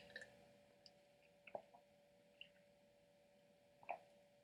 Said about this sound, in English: I'm just going to take a sip of water here.